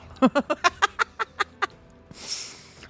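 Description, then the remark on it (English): A large bird gives a quick run of about nine loud, harsh calls in steady rhythm, followed by a brief breathy rustle once the calling stops. “Chirping. Big bird. Ca-ca!”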